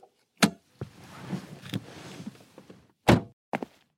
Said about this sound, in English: He sits in his driveway for a long while, his body now feeling the same aches from before. Finally, he finds it in himself to open the car door and get out.